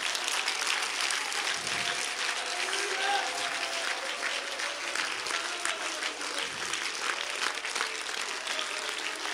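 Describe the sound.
An audience at a church service claps loudly and steadily in praise to the Lord, a dense, continuous wash of applause filling the whole clip, with faint voices and cheers mixed in beneath.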